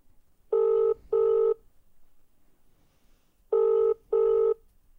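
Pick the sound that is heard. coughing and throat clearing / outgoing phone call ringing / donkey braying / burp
outgoing phone call ringing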